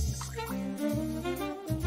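Jack Daniel's 10-year whiskey pours steadily into a glass, a continuous gurgling stream with a hollow, ringing tone that shifts in pitch as the glass fills. No one speaks.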